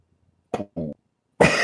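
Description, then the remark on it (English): Someone vocally imitates a deep 808 bass drum: a short breathy burst, then a buzzing low hum, then a louder, harsh, raspy blast, coming out almost cough-like rather than truly deep. “Do a deep 808 sound.”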